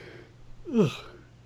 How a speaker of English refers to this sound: He's yawning again, folks.